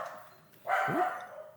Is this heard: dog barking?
yes